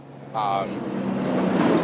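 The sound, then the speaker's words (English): A heavy truck rumbles past in Curtis Bay, an industrial area by the harbor in Baltimore, Maryland. Its low engine drone swells and holds steady, with a brief high whine or squeal near the start. “The sound of a truck is Curtis Bay.”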